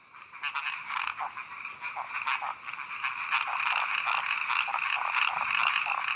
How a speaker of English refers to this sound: Here's how it works. One little male will start the call. This is an actual frog the researchers recorded, by the way. Now, almost immediately, he's copied by all these other frogs.